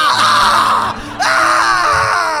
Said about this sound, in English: It sounds like he's having a rough poo. And as the blood-curdling screams of a man being ripped to shreds, in fact, three men being ripped to shreds, besides that delightful old man...